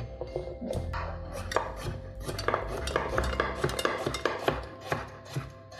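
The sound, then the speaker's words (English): Hands toss and mix chopped vegetables with olive oil in a large bowl, a steady run of wet rustling and soft clattering knocks against the sides, with no talking. “I put all of these vegetables in a large bowl so that I can then use my hands to mix in the olive oil.”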